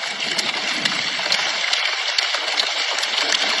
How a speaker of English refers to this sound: Now it's transitioning to the hard rainfall.